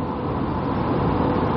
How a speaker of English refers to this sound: I know this is supposed to be a short preview, but I'm driving to work right now. If any of you guys hear stuff on the background, that's me driving to work.